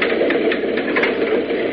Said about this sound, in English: And he's locked in a refrigerator car. Down! Down! Now, force this door open like this.